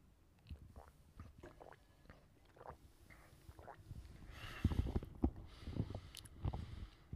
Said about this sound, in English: Hold up, I gotta take a sip.